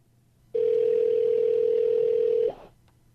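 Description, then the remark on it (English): A steady, loud telephone dial tone, placing a call to Will Beatty at Centerforce, hums at a low-mid pitch for about two seconds, then cuts off abruptly, leaving a faint click and near silence. No one speaks. “Now that we've caught up on truck news, why don't we give Will Beatty over at Centerforce a call?”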